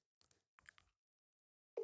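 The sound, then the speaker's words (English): A loud, steady electronic phone ringing tone of an unanswered call cuts in abruptly at the very end, following a few soft rustling, crunchy handling noises; no one speaks. “Will Kevin even answer the phone? He's going to ring out”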